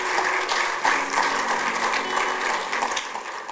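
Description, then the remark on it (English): A crowd claps steadily for several seconds as a clap offering to the Lord, a dense, sustained wash of applause at an even loudness with no speech over it. “Give the Lord a clap offering somewhere.”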